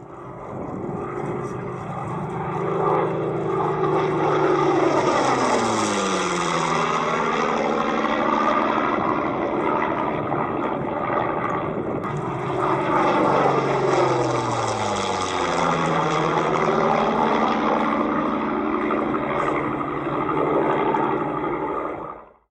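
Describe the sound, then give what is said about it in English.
Roaring Rolls-Royce Merlin piston engines of Spitfires pass overhead at Duxford Aerodrome in Cambridgeshire, England, in two loud flybys, the pitch sweeping down with a strong Doppler shift as each one approaches and recedes. No voices. “The unmistakable sound of Rolls-Royce Merlin engines, in this case mounted in Spitfires, overflying the Duxford Aerodrome in Cambridgeshire, England.”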